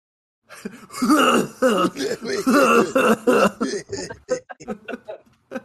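A person coughs and clears their throat: a string of strained, voiced throat-clearing rasps followed by a series of short, sharp coughs that taper off.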